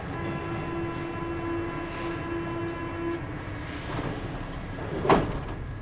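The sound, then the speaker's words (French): A metro train rolls steadily along the rails with a constant low rumble and humming motor whine, a thin high squeal creeping in, and a single sharp clack near the end. “Attardons-nous aujourd'hui sur cette notion et voyons comment rentabiliser vos trajets quotidiens dans le train ou dans le métro.”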